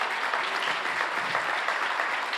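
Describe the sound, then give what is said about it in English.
A crowd claps in a steady, dense round of applause for a food pantry pickup team, many hands blending into a continuous crackling wash that holds an even loudness throughout with no voices. “Can you give them a round of applause for me?”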